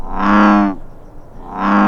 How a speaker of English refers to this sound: Ah, yes. I know that sound. I like bullfrog noises.